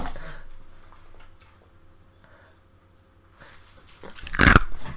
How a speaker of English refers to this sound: I will chew all this ice into the microphone.